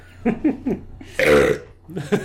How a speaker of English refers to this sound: I did a thumbs down while I burped. It would have been a lot funnier with video.